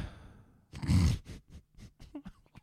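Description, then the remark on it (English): A single big, deep gasp bursts out loud, a breathy rush of air, followed by a few softer, shorter breaths and mouth noises trailing off. “What's this big, deep gasp?”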